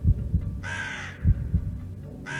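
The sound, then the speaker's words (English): Two harsh, raspy crow caws ring out over a low, pulsing heartbeat-like throb, with the start of a third caw at the end; the calls are loud. “Then returned the sound of the evil crow.”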